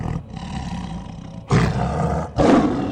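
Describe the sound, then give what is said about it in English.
A giant white tiger's deep, rumbling growl rolls on steadily at night, then swells twice into louder, throaty roars, powerful with no voices present. “In a sudden flurry, the brush in front of them swished violently aside as the face of a giant white tiger peered through. Rows of sharpened teeth glinting dully in the night as a low growl echoed from its chest.”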